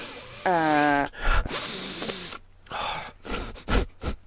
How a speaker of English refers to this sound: Have you any tissue? Do you ever have to fucking just pick your nose really bad? Is your nose bleeding? For the amount of time my finger goes up there, it probably should be, but it's not.